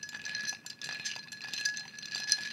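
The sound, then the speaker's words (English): A drink with lime juice being stirred in a bar glass: a steady run of quick, bright clinks and rattles as the spoon knocks around the glass, continuous for a couple of seconds with no talking. “And give it a stir.”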